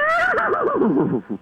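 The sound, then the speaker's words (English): A person's voice imitates a horse whinny, starting high and then wavering down in a rapid, quavering warble that ends in a short lower snort. It is loud and alone. “I mean, that's a good horse sound.”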